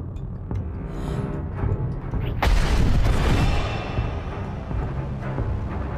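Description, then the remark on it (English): In a battle scene, a loud explosion erupts partway through in front of a man with an ignited lightsaber, a sharp blast trailing into deep rumbling, set against a constant wash of battle noise and further booms. No one speaks. “And from the back, like he's got his lightsaber ignited, and then there's an explosion in front of him.”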